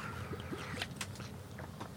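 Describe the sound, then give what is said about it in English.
Quiet mouth sounds of someone taking a quick sip of water and swallowing, with a few soft wet clicks and gulps over a low background hum, no talking, in the back of a van by a river. “I have a little quick sip of water because I'm a great way to start a podcast.”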